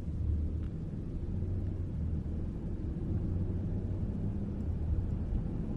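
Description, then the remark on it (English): A steady, muffled engine rumble from inside a moving car driving at sunset, deep and low-pitched with a continuous hum and faint road noise, holding an even loudness throughout with no voices. “The soothing muffled sounds of the engine, shaking lightly, going side to side, side to side, side to side, creates a wonderful, comforting”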